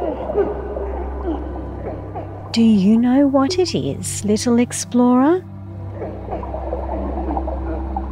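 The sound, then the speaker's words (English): An underwater seal vocalizes in a burst of loud, wavering calls: whistly tones sliding up and down, plus a few rising sweeps, over a steady low rumble. A voice speaks before and after. “Yes, it's a seal. A beautiful creature who lives both above the water and below.”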